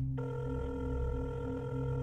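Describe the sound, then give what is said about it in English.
A phone line rings as a call is placed from home, a steady buzzing ring tone coming through the receiver and holding unbroken for a couple of seconds, with no voices. “and then when Norman returned to his home, he picked up the phone to make the hardest call of all.”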